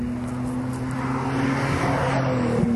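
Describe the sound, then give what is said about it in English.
A Nissan GT-R race car from Japanese Motorsport drones steadily with a low, humming tone, its roar swelling louder toward the end as it passes and the pitch dips slightly. No one speaks. “Another Nissan GTR Japanese Motorsports.”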